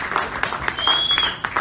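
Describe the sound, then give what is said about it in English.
A crowd breaks into a steady round of applause for a band, many hands clapping in a dense, fairly loud patter with a few sharper claps standing out. “band another good round of applause.”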